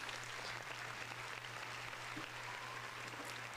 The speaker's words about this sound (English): And that Mass Effect joke worked again. Bitch. Give me my round of applause.